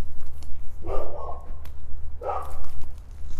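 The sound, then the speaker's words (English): Dogs barking at a dog park, two bursts of yapping separated by a brief pause, over a steady low background rumble with no one speaking. “The doggies over here are getting crazy. I'm near a dog park.”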